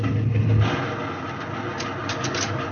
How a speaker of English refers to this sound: April 5th. A Catalina flying boat dropped out of the sky. Her wheels retracted. Her wing floats lowered.